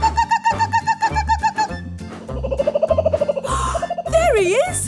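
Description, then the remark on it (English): In a Thomas the Tank Engine story, Ranger Jill mimics a kookaburra's cackling call as Thomas puffs slowly along: a rapid, rising-and-falling run of laughing notes over a bouncy musical backing with a steady low beat. “As Thomas puffed slowly along, Ranger Jill made the bird sound again.”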